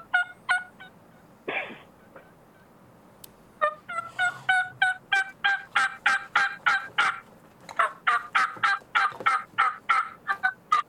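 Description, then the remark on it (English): A hen turkey call blown on a Cheating Hen model game call: a long run of sharp, evenly spaced yelps, loud, after a few opening clucks, with no talking. “Okay, so this is the Cheating Hen.”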